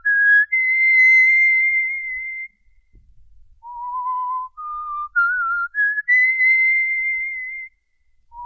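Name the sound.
man whistling a tune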